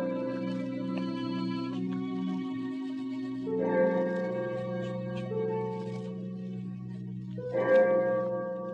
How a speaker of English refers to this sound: I had no idea how long I worked until I heard the clock of St. Jude's in the distance. It was 4 o'clock.